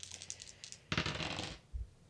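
A quick clatter of dice tumbling across a hard surface, a burst of rattling clicks that settles within about a second, preceded by faint light tapping and ending with a soft thud.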